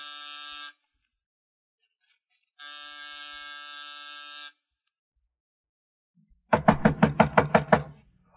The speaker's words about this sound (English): It was close to 5:00 when I rang his doorbell.